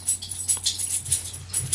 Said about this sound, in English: Sorry if you're hearing my dog. My dog is in the background. I guess grooming herself, scratching herself.